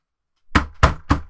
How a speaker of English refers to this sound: Shall we knock on the door?